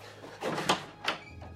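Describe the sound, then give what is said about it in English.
A door opens with a short scraping rush followed by a second clunk, both moderately loud against a faint background hum, with no voices. “Blueberry, open the door.”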